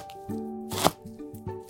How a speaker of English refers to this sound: Push the blade forward and down, using the blade's curve to guide the middle of the knife through the food. The tip of the blade should touch the cutting board at all times. Okay, here goes nothing.